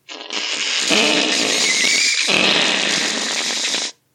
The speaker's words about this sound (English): I awake, reverberated into consciousness, halfway through my sustained release of a massive fart.